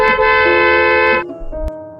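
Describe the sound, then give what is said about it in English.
A car horn, honked by a man in New York traffic, blares in one long, loud, steady blast for over a second, then a quieter, lower-pitched horn tone trails on briefly behind it. “The sound of a guy honking his horn in traffic.”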